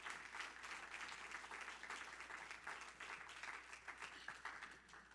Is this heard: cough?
no